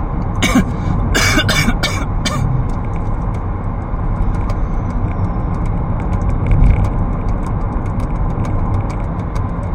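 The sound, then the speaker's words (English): A quick cluster of four or five sharp coughs in the first couple of seconds, then only a steady low rumble of road traffic or a car interior, with no talking. “Yeah, but so far I'm healthy, it's just annoying the cough.”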